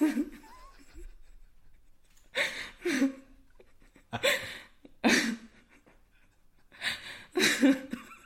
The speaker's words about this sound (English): You sound like you've run a marathon. I am breathing like an asthmatic in a smoke factory.